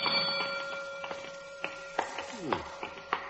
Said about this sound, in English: Throw off the alarm, someone.